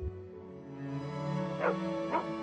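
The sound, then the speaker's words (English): A dog, Vincent, gives two short, high yelping barks with whimpering tones, over a steady sustained musical drone that fills the background. “But the emotional kicker is, of course, the appearance of Vincent the dog.”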